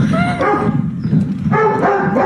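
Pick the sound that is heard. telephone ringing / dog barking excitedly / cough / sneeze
dog barking excitedly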